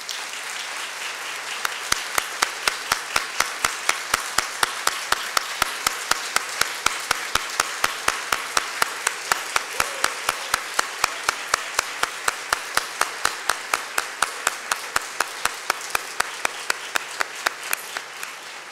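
A sustained round of applause from a crowd, dense steady clapping with a regular rhythmic beat running through it, holding at an even level for the whole stretch with no talking.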